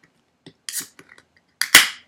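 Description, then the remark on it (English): A few small metallic clicks and scrapes, then a sharp, loud crack as a beer can is opened, followed by a bright fizzing hiss that fades away. No one speaks. “So, go ahead and crack it open, big dog.”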